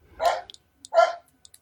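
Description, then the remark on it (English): Two loud dog barks about three-quarters of a second apart, each sharp and full-bodied, with faint small clicks between and after them and no talking. “Do you want me to wait until my dog is not barking?”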